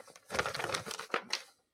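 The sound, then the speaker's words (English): Blank sheets of paper rustle and crinkle for a second or two, a dense run of crisp handling noises with a few sharper flicks near the end, no voices. “He has notes. He has notes, folks. It's just blank paper.”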